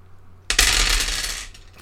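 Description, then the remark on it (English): A burst of hard, rattling clatter as six dice tumble and roll together for about a second, loud and bright, then settle. No one speaks. “It was 6 dice, but we're only using 2 of them here.”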